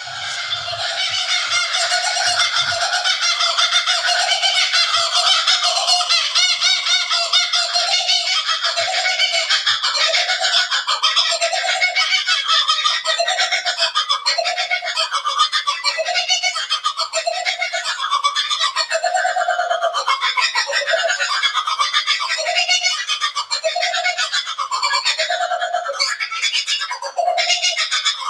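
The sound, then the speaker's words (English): Two kookaburras cackle together in a loud duet on a balcony in Australia, their raucous laughing calls rising and tumbling in rapid, overlapping bursts for nearly half a minute without pause. “And so really quick, I just want to play a duet of two birds on this balcony in Australia that are just having a heyday.”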